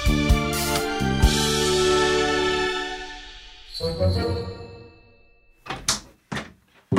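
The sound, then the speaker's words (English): A door opens with a long, loud, drawn-out groaning creak as someone enters, followed by a softer rattle and then a few sharp thuds, with no one speaking. “Hey, didn't we lock that door? I had an idea. How does he keep getting in?”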